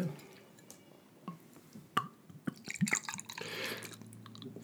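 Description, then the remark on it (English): A Driftless Brewing Company beer from Soldier's Grove, Wisconsin, pours into a glass, starting with scattered drips and small splashes, then building into a steady, fizzy gurgling stream toward the end. No one speaks. “Let me pour you one of these.”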